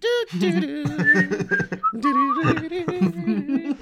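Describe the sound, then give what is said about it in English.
Someone whistles a short, wavering tune, with breathy hummed and voiced tones blending into the notes. The melody runs steadily for a few seconds without any speech. “Can you guys whistle it?”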